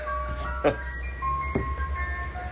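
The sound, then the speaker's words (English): An ice cream truck's tinkling jingle plays over a low engine rumble, with a couple of brief clattering knocks as it rolls past. “Yes, that is an authentic ice cream truck rolling by.”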